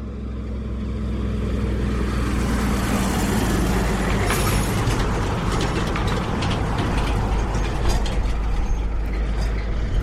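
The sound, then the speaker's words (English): A three-carriage road train truck carrying ore roars past on the dirt beside a single-lane tarmac road, a steady rumbling drone with rattling, clattering mechanical noise and gritty road texture throughout, no voices. “Three-carriage road train just passed us, and now another one's coming back in the other direction that has four carriages.”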